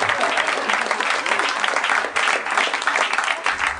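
A live audience at a Harmontown show claps steadily, a dense wash of many hands that stays loud and fairly even for a few seconds, with a brief dip midway before swelling again, applauding the show's comptroller being given a sash.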